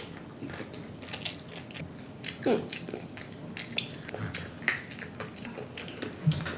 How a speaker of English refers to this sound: Yes, that's broccoli. Do you like this part? I eat that part and the crunchy part.